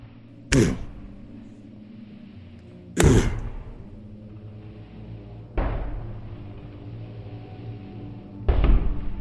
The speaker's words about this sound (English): There is one other sound that you hear. Heavy footsteps on the stairs going down. On the stairs coming down.